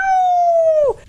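A dog that was attacking another dog lets out a single drawn-out, high-pitched yelp, steady and loud for about a second before its pitch bends downward and cuts off abruptly. No talking.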